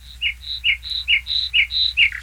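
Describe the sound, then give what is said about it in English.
A northern lapwing, a medium-sized wading bird about 10 to 16 inches long, calling repeatedly, a rapid series of shrill, wheezy chirps alternating between higher and lower notes in a steady rhythm, clear against a faint low rumble. “That is a bird, a medium-sized wading bird called the northern lapwing.”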